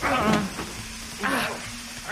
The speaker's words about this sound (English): Fail me, and it looks like you have a gas leak to fix. Better hurry.